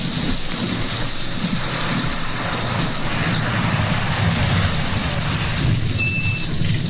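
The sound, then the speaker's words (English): Heavy rain pours down in a dense, steady hiss that never lets up, with a low rolling rumble of thunder underneath. No one speaks. “Yeah, it is raining pretty hard.”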